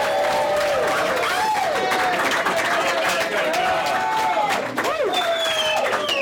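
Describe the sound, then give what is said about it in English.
A crowd breaks into sustained applause with cheering and whoops for a live show's first guest, dense clapping running steadily throughout while excited voices rise and fall over it. “everyone please give a huge round.”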